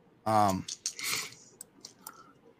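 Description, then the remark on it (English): A short voiced exclamation, then a burst of rattling clatter from five dice tumbling and settling, ending in a few scattered light clicks, moderately loud. “All right, so what we're going to do is we got 5 dice here”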